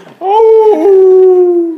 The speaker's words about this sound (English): I thought there was a real wolf around me. There's one right there. Hey! Is that a wolf or a foghorn?